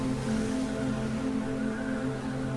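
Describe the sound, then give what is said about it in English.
Steady, roaring ocean surf of a storm at sea fills the whole stretch, with a low droning hum running underneath and no voices. “See the waves growing high above your head, then crashing into the ocean.”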